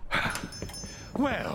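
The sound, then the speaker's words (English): A dog named Hector whimpers and lets out a few short, high yips, ending in a rising whine, with faint voices in the background. “We will undertake that the dog shall do you no harm.”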